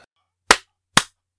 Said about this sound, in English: Oh, should I do a clap? We're already started, but Let's do a clap.